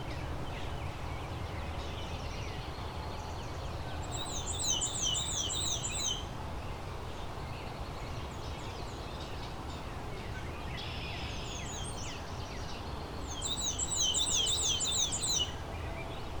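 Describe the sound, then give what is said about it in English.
Two soft, quiet bursts of warbling song from a black-and-white warbler, each lasting about two seconds, rising above a steady low background hiss with no talking. “It's a very soft warble, not hard at all. It tends to be quieter.”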